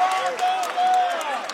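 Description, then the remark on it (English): Basketball fans scream and roar in a gym during a district championship game, with the score tied late in the third quarter, in a dense, steady wall of crowd noise, loud throughout, with thin high-pitched squeals and shouts rising out of the din. “The fans screaming that behind us.”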